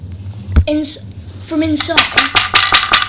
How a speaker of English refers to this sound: Of room 701. Okay, I'll knock on the door.